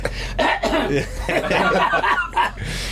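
A man coughs in a series of harsh, breathy bursts over a few seconds, the coughs blending into snickering, chuckle-like sounds.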